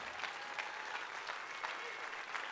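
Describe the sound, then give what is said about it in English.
An audience claps together in a dense, steady wash of applause, many hands blending into continuous crackling noise with faint rhythmic surges throughout. “Do not clap if you're racist.”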